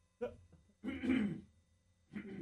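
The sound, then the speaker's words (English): A person coughs and clears their throat in three close bursts, the middle one longest and loudest, with short quiet gaps between them. “I'm going to cough again”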